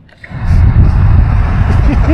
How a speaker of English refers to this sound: The edit on this, you'll probably hear some car noises. There's no doubt about that.